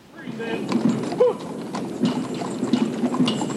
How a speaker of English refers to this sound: And there was the horse-drawn caisson with the flag, with the full military band.